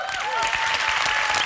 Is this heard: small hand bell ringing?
no